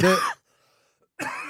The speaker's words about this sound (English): I was coughing as well.